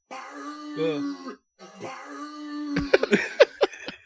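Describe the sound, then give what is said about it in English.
Hulk Hogan, in a TNA clip, imitates a dog, starting with two drawn-out, whining howls and then breaking into a quick series of loud, sharp, strained barks. “It's Hulk Hogan dog bark TNA.”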